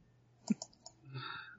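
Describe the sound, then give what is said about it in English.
Four quick, crisp keyboard keystrokes tap out as someone types the name Mandragorian, followed by a brief higher-pitched sustained tone. “Typing it out for you.”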